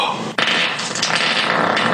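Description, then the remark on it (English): A loud, raspy burst of air expulsion, a penile 'fart' sound, starts abruptly and holds as a sustained sputtering hiss for over a second, alone with no talking. “That right there, that's a dick fart.”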